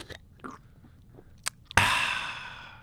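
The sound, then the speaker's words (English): A few soft, wet sips and mouth sounds from a glass bottle of Miller High Life beer, followed by a sudden bright, fizzing burst that rings on and slowly fades. No talking. “Yeah, so you take a sip also.”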